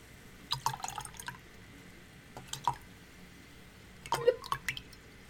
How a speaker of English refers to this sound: Splooshing and a splashing on in these glasses.